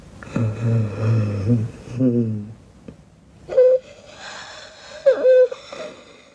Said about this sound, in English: there's this bizarre like scary ass snoring, which Miguel, please cut a clip of Mother Marco's snoring because it's horrifying.